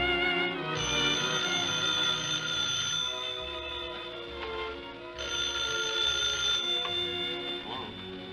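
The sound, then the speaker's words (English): A telephone bell rings in two long bursts separated by a short pause on an old radio show, a phone call for George Burns, fairly loud and close, with a dense metallic jangle and a faint murmur of background sound between rings. “Phone call for George Burns. Phone call for George Burns.”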